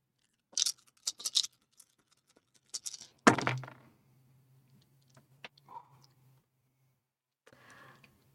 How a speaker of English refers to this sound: And you're gonna roll 2d12s and take the lower one. Dice. Please cooperate.